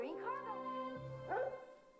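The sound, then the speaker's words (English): A dog barks twice, a longer bark followed by a shorter one about a second later, over a steady humming musical background, in a 1990s Old Navy TV commercial. “Old Navy making dog memes cool since the 90s.”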